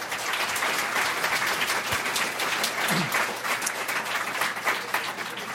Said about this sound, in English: Well, we've covered a lot of ground here today, and I appreciate you all coming. How about one final round of applause for our speakers?